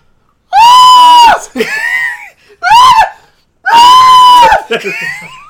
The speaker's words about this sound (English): The spider being placed on … face and the scream that ensues.